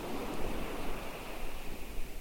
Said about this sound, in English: Allow yourself to hear the ocean, the waves as they break on the shore. Look at its foam, the white bubbles and textures as they softly kiss the shoreline.